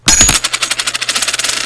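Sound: coin toss landing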